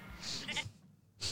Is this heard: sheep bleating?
yes